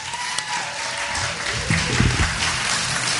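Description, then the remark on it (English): A theater audience at a Shocktober film event in Irvington applauds a filmmaker steadily for about three seconds, a dense, even wash of clapping with a few muffled voices or whoops rising briefly near the middle. “a round of applause.”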